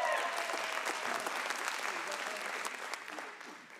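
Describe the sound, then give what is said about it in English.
An audience applauds a woman at her surprise birthday celebration, a steady, dense wash of many hands clapping at once that holds fairly loud and even before tapering off slightly toward the end. “Give her one more round of applause.”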